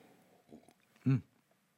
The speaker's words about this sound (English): Oh, let me have another sip of this here. It's not poison China water. It's poison California water.